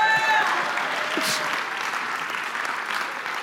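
A steady round of applause from a group, dense clapping that stays fairly even and loud for a few seconds with a brief whistle-like tone at the start.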